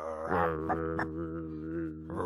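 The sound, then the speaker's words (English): A person imitates a crocodile's growl with a low, steady, rumbling voice, loud for about two seconds, with a few brief catches in the sound and no other talking. “You sound like a car that's just like ticking over. You sound like a puppy.”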